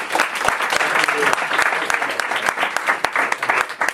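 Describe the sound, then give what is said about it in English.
Sustained audience applause as a speaker is introduced and handed the floor, a dense, steady wash of many hands clapping with sharp individual claps popping out, loud and continuous for the whole stretch. “So a big round of applause for”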